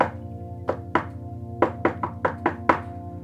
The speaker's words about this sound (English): He walks over to a rock and he taps on it with a secret series of knocks.